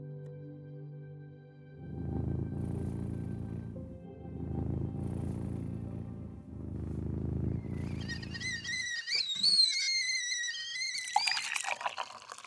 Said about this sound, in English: We thought we would just take it over the top today with a sound effect of a cat purring. Tea kettle, tea pouring into a cup, cat purring. What gets cozier than that?